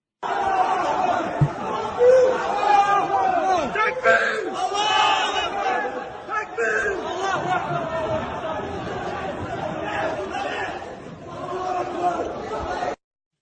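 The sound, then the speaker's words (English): A large crowd of Russian citizens storming through an airport shouts angrily all at once, a dense roar of many raised voices with sharp yells breaking through, steady and loud for the whole stretch. “They were storming through the airport and shouting the most vile things ever.”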